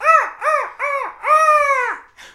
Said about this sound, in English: And very far off, you can just hear the tuneful call of a seabird.